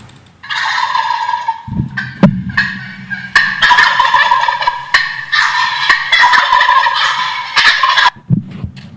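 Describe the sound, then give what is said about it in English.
Several wild turkeys gobble loudly, their rattling calls overlapping in bursts for most of the nine seconds, with brief low thumps between them and no talking. “Wild turkeys. They seem to be everywhere, don't they?”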